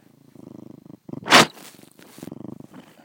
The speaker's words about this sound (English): He's purring against the microphone.